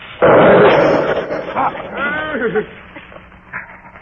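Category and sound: sound effect, bomb explosion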